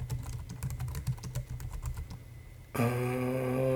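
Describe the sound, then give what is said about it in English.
Quick bursts of keyboard typing while looking up a Jackie Chan movie, a run of crisp key clicks for a few seconds, then a steady tonal hum with bright harmonics takes over abruptly. “Keyboard not connected.”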